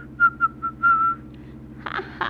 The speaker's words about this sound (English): Don't tell Grandma, but I can whistle. Want to hear me?